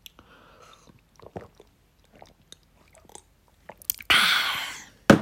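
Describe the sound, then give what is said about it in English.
Someone drinking water: a string of soft, scattered mouth clicks and swallows, then a loud, breathy exhale lasting about a second, and a final sharp click. “Ooh, needed some water after all that.”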